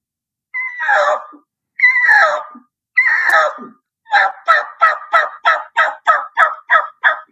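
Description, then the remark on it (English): A raspy turkey call worked with jaw action: three drawn-out, harsh yelping notes, then a quick, loud run of about ten short barked notes in a steady rhythm, with a raspy tone at the end of the call. No one speaks. “So you're barking the call out a little bit more, I guess you would say, and getting that raspy tone at the end of the call.”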